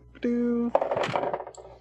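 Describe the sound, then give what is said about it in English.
A short, steady humming tone is followed by a burst of rapid rattling clicks as dice are rolled for a computer check, tumbling and clattering across a hard surface and fading out over about a second. “If you would like to roll another computer's check, you can, or you guys can just use the key card as well.”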